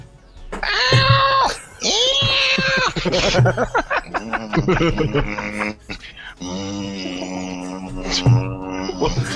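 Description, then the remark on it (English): A person vocally imitates an angry cat, with drawn-out, wavering yowls and growls that rise and fall, loud, followed by choppy grunting mimicry and more strained, moaning cat-like cries. “Stop, angry I get it. Cat sound.”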